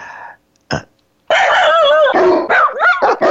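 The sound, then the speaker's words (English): A voice imitates a dog barking: a short yip, a pause, then a long, drawn-out, groaning bark-and-whine sequence, loud. “Even their dogs are lazy and disconnected.”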